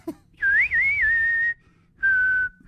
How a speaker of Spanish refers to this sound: Let me whistle, because two whistles are no good.